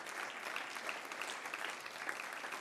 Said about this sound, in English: Could you give a hand clap of praise for that?